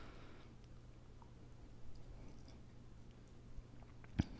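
Quiet chewing with soft, irregular mouth noises over a steady low hum, ending with one sharp click near the end; no one speaks.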